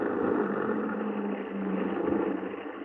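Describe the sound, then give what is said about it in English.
A truck engine rumbles steadily, a low droning hum with broad mechanical noise that barely changes, as the truck, escorted by a car, arrives at a house and settles to a halt. No voices. “A car escorted him to Soderbury, and the constable and I were at his house when he arrived.”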